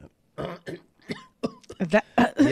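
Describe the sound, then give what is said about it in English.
A dry fit of coughing from a tickle in the back of the throat: about half a dozen rough hacks and throat-clearing bursts in an uneven rhythm, growing louder and more strained toward the end. “Have you ever had that thing in the back of your throat that makes you want to gag and cough all the time and it just won't go away?”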